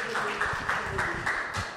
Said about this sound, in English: All right. Give her a round of applause.